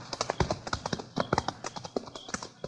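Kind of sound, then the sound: animal, horse hooves clip-clopping away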